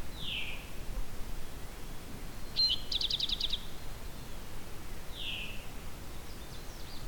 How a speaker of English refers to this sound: There's also a Canada warbler here too.